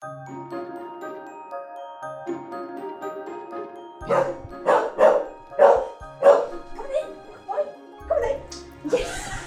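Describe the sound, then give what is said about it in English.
A dog lets out a quick run of about eight loud, sharp barks in steady rhythm, after a few seconds of drawn-out, whiny vocal tones. “What do you have to say about training with a medical dog?”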